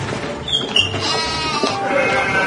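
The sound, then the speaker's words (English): A goat bleats loudly in a long, wavering cry with a strained, nasal quality, held for a couple of seconds with a few breaks in pitch. “You into goat play? What is goat play?”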